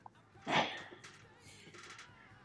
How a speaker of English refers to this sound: Well, I just threw Walter a bone and he's still barking. Aren't you, boo-boo? Go lay down, baby.